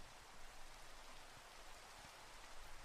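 Steady rain hissing down on a surface, a dense, constant wash of fine drops with no pauses, moderately loud, with a faint low rumble underneath.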